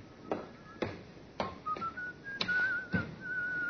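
A man at a baggage check counter whistles a wandering tune at moderate volume, the melody rising and falling, while several sharp knocks or footsteps land at irregular intervals underneath.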